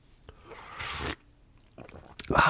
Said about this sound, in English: hang on, let me take a sip of my beverage.